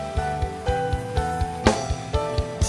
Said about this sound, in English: Let's go to your pastors. Clap your hands for them. Oh, keep clapping.